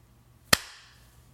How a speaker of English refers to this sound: Shall we clap at 40 seconds? Okay. Sounds good.